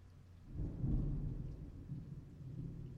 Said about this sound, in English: Father, as a storm rumbles around me right now in the natural, I know that there's been one going on in the spirit for a while.